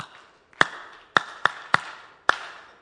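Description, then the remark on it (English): A group of tribe participants claps for someone in a set pattern: one sharp clap, a pause, three quick evenly spaced claps, then a final clap. The claps are crisp and loud, with no talking. “This is a new set of tribe participants. This is how we clap.”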